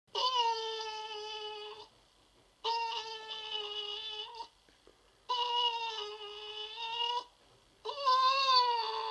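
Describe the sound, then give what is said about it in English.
A caged dog wearing a cone on its head cries in four long, loud, high-pitched wails, each lasting about two seconds with brief silent gaps between, the tone wavering slightly with no voices present. “What's the dog doing? It's just sitting there crying.”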